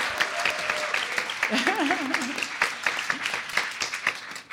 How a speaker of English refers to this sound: So I'd like for these pitchers that are going to be pitching to stand up, please. And just give them a round of applause.